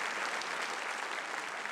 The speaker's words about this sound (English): So come on, give Jesus a great big hand clap, because he's deserving all of it.